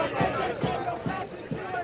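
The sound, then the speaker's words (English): A dense crowd of pro-Trump and anti-Trump protesters near a court yells and shouts back and forth face-to-face, with whistles from anti-Trump protesters a few meters away piercing the roar and rhythmic bursts of voices pulsing roughly every half second, loud and continuous throughout. “The whistling you hear is from anti-Trump protesters just a few meters away.”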